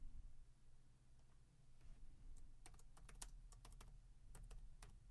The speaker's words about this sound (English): You can hear me typing in the background.